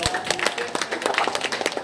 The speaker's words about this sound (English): A round of applause